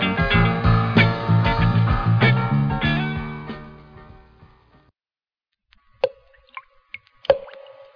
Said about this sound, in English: The sound you hear is dripping blood. This is the start of Black Sunday.